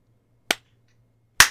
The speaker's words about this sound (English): All right, and time that is, let's clap at 5 seconds.